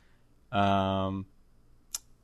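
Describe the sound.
A single sharp, fairly crisp computer mouse click, clicking on Alan Moore, comes right after a short burst of someone's voice, then quiet.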